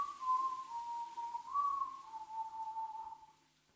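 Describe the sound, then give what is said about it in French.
A person whistles a slow, wavering tune for a few seconds, the pure tone gliding gently up and down before trailing off, clear with no talking. “Je pouvais la siffler de mémoire si je voulais.”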